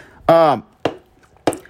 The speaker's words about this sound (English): Rack them up. Hey, looking to play pool?